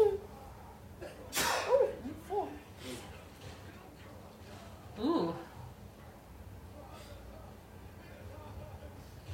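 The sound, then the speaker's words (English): Two sharp sneezes burst out a few seconds apart, each a sudden explosive rush of breath with a voiced edge, then quiet room noise. “Bless, bless you. That's three.”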